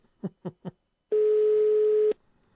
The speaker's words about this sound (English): See if they answer. International diversion on a local number. Because that's not an Australian ringtone.